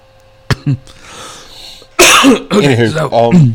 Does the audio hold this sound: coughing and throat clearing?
yes